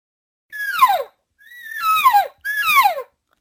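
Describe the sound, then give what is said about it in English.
Three nasal, whining elk cow calls blown through a bugle tube, each sliding downward in pitch for about half a second, with short pauses between them and no talking. “Okay, here's a cow call through a bugle.”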